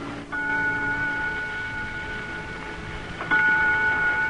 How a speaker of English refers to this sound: That's a very pretty chime to that clock, Miss Carroll. You know, that little china clock is all I have left of what was once my home. Kingsford Hall, our plantation in Maryland.